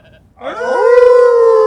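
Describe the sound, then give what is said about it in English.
Voices imitate a wolf howl, a loud wail that swoops upward and then holds a long, steady pitch. There's no talking. “Now, let's have a good howl to get ourselves in the mood.”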